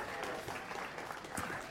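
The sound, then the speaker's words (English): An audience at a church service claps steadily along with a song, a dense wash of many hands at moderate loudness with no break, the sound spread out as if from a crowd. “You guys are really enthusiastic with your clapping.”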